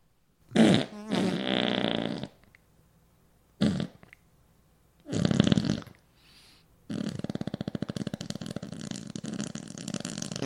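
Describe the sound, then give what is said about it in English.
A person blows several wet, buzzing mouth farts imitating flatulence, three short bursts followed by a longer sputtering one that turns rattly and splattery, loud with no talking. “A mouth fart. Yeah. Not a burp. A mouth fart.”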